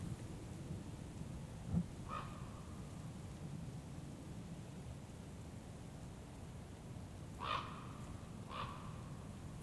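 Two ravens flying overhead give three hoarse, croaking calls: one early, then two close together near the end, over a steady rushing background of wind or outdoor noise.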